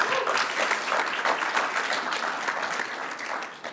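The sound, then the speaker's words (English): An audience claps steadily for nearly four seconds as an applause vote between Uncharted games, a dense, even patter of many hands at constant loudness with no voices over it, tapering slightly at the very end. “We need an applause vote here on this.”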